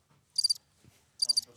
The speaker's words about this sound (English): The crickets.